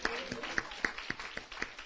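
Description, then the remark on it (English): An audience claps in praise of the Lord during a sermon: sharp, steady claps about four times a second in a strong, even rhythm over a low murmur of voices. “Come on, let's take our claps a little bit higher for him.”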